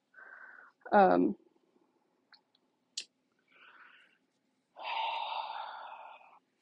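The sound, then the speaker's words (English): Several breathy sniffles come in short bursts, with a brief voiced snort-like noise early on and a longer, wetter sniffle near the end. No words are spoken. “Yes, I'm still sniffling, as I always do, always.”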